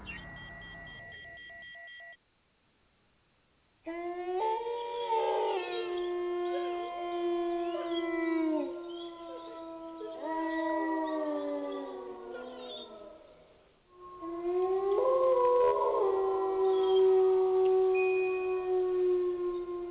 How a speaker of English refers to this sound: And that's my wolf pal calling all my guests back onto the air. It's time to get back on.